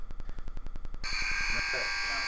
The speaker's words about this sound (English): They made the buzzer.